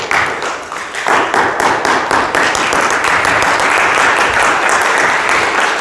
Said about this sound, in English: Are you ready? 1, 2, 3. Okay. I saw it. A double clap.